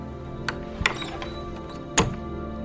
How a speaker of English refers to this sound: And then the door on the way out with the squeaky.